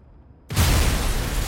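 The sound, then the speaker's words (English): After a moment of low, quiet rumble, a dynamite explosion erupts suddenly and loudly, set off by a lit candle in a wooden shed filled with dynamite at 41st Street and Park Avenue in 1902; its blast is sustained as a heavy, roaring wall of noise with deep booming undertones. No one speaks. “And that was such a violent explosion, it blew out the facade of a fancy hotel that looked out on the construction site.”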